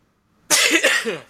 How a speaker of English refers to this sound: I'm about to sneeze.